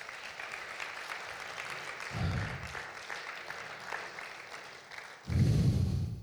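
An audience applauds the Lord Jesus steadily, a dense crackle of many hands clapping throughout, with a low rumble swelling briefly midway and again louder near the end.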